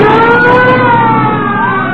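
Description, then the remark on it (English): A loud police siren from police cars signaling a car to stop wails continuously, its gliding tone rising and falling over steady engine rumble, with no talking. “Police cars.”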